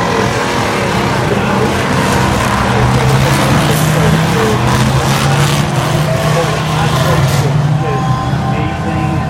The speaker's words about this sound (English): The starter engine command has been given. The GT4 engines of these fine machines have roared to life. The BMW M5 pace car lights are on, so we're about to get rolling on a grid.